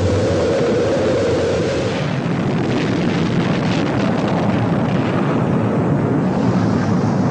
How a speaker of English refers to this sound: T-minus 10, 9, 8, 7, 6, 5, 4. We've gone for main engine start. We have main engine start.